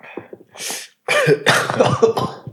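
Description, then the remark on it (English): A loud, close-up coughing fit right into the microphone: a few small throat sounds and a short breathy burst, then a dense run of harsh coughs lasting over a second. “Try not to cough into the microphone, guys.”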